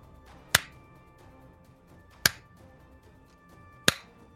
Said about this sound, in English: slow clap.